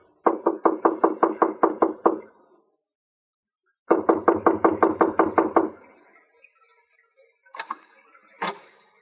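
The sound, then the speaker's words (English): Two quick bursts of loud, rapid knocking on the door of apartment 1A in the Winthrop Arms apartment hotel on Havenhurst Drive, about nine raps each separated by a pause, followed by a couple of fainter single thuds. “I went inside and up to the door.”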